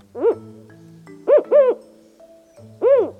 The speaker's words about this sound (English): This one is a Mexican spotted owl. Mexican spotted owls are large, up to 19 inches tall. They're brown and, unsurprisingly, spotted.